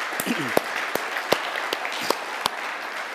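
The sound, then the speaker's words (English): An audience clapping their hands in praise to God during a morning church service: a dense, steady wash of applause punctuated by several sharper, louder individual claps, with a faint voice briefly audible underneath. “So if you think God's worthy of that, would you clap your hands this morning?”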